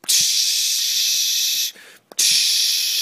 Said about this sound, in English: Just then Ralphie heard, what's that sound? Someone had accidentally pressed up against the washing machine, filling it with water.